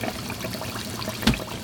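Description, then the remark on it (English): Mandazi dough sizzles and bubbles in hot oil, a steady crackle with one brief louder pop near the end. No voices are heard. “You just dip the mandazi in there. Then it will start doing the bubbles.”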